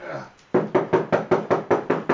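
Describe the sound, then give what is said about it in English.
A quick, steady run of about nine firm, loud knocks on a hotel room door on the second floor, following a brief murmur of voice at the start. “Yeah, I was knocking on...”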